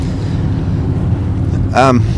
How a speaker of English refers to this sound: If you can hear the hum of the engine, that's the engine of my 1991 Toyota Camry. Yeah, it's quite an old car.